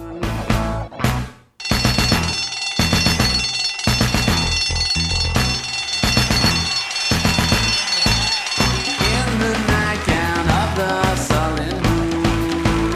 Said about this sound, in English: We've got this instrumental break with these pounding drums and the phone ringing sound kind of, right? Or the fire alarm. It's the fire alarm. Oh, my God. I've never thought that. Well, is it a fire alarm or is it a school bell?